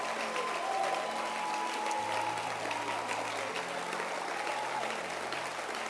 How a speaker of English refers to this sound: Last week, by this time, Reverend Akins was preaching powerfully. Clap your hands and let's appreciate him.